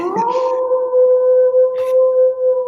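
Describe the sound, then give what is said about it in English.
A single sustained wolf howl sound effect, loud, holding a steady pitch after a brief rising start, with a faint breathy noise mid-way and no talking. “Play that wolf sound, Scott.”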